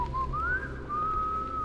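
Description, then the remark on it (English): A boy whistles a single sustained, wavering tune, the pitch sliding up then leveling off, clear over a low background rumble. “To Clancy's horror, the young boy begins to whistle.”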